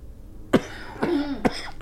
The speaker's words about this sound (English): I'm coughing like crazy. What's with the coughing? It's Santa Ana's. I was going to say it's that. It's the allergies.